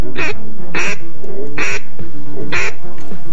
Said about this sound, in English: listening to the duck calls wailing in the fall air. I listened and started naming each in my head. Mallard. Wood duck. Gadwall. American black ducks.